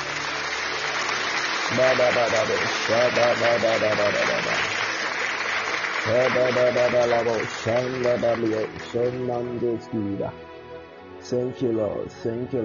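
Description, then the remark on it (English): A church audience claps for Jesus together in a dense, steady patter while a loud voice calls out over the top; the applause thins and scatters toward the end. “Slap your hands for Jesus. Slap your hands for Jesus. Just clap for Jesus. Clap for Jesus.”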